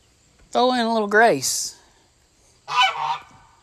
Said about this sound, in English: And my goose got to get in a word.